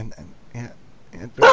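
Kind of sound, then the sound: animal, dogs barking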